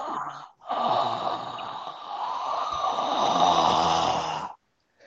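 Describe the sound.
A voice imitates hissing: a short breathy burst, a brief pause, then one long raspy hiss lasting about four seconds, fairly loud and steady before cutting off abruptly.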